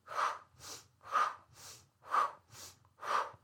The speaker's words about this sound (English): Remember to do really good, powerful in and out breaths as you're doing this. These good, solid, powerful breaths are going to be changing the body's chemistry as you're doing this exercise.